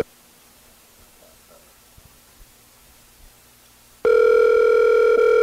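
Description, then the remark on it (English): After about four seconds of near silence, a loud, steady electronic ringback tone starts abruptly and holds to the end, the purr of an outgoing phone call to a brother sitting on a couch, waiting to connect. “Call my brother over there. He's sitting on the couch. Is it going to ring? Oh, yeah, there it goes.”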